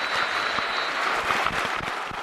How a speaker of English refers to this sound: united with Ipswich Town in honouring the memory of Kevin Beattie. The Blues legend died on Sunday at the age of 64. Before kick-off, there was a minute's applause for the man former England captain Terry Butcher described as the complete footballer.